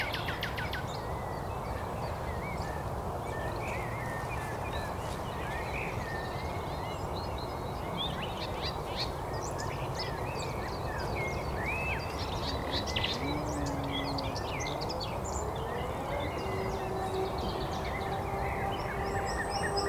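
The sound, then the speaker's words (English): A nightingale sings varied, rapid phrases of whistles and chirps over a steady, loud rumble of road traffic that persists throughout. “Nightingales having to compete with a bit of road noise.”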